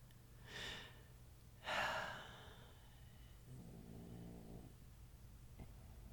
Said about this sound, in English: My dog snoring.